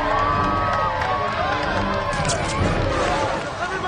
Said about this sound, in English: Now, can we get a big cheer for diversity?